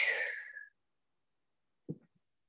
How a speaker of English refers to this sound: So we don't have to time ourselves, but I invite anyone that's listening to join me in breathing as slow and long and deep. So let's get a few in. Exhaling all the air.